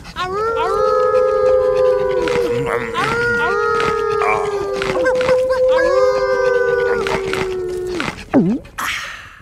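Wolves howl in a loud chorus, several long sustained howls overlapping and sliding slightly in pitch, ending with a short downward yelp before fading.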